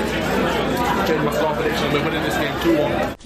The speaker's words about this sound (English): So it was, so just because it was quite a lot of crowd noise there.